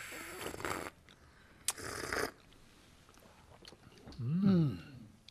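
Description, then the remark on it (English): Two airy slurping sips of tea, each lasting about half a second, followed after a short pause by a low, appreciative hummed murmur. “And the sip.”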